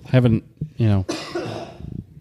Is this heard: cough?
yes